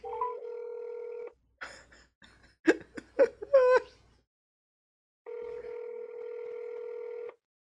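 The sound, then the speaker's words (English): Two long, steady phone ringing tones separated by a pause, loud, with short bursts of giggling laughter filling the gap between them; the call goes to voicemail. “I'll give it one more ring.”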